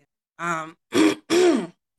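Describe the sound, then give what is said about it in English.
Three quick, fairly loud throat-clearing bursts: a voiced hum-like rasp followed by two harsher, grittier rasps, with short pauses between and silence after. “Were you choked up, or were you clearing your throat?”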